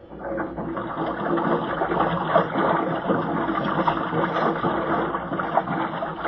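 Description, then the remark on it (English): An airlock being filled with water: a steady, dense rush of churning water fills the whole stretch, a continuous gurgling roar with a mechanical hum beneath it, holding an even loudness throughout with no voices. “Okay, I'm going to fill the lock.”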